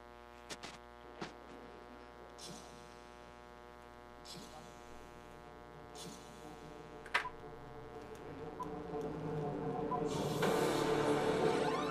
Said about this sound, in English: This is that IMAX opening here. Oh, we're gonna be here in a few seconds. Doing a sound check. So they're twirling and making this.